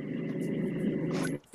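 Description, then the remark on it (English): A dog growls in one continuous, rough, low rumble that holds steady for over a second, then cuts off abruptly, with no talking over it. “Man, that dog's pissed.”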